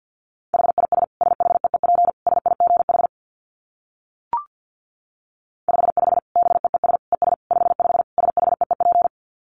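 Two long runs of very fast Morse code dits at 50 words per minute, a single steady mid-pitched tone keyed in rapid, tightly packed bursts, separated by a pause holding one brief click. No voices.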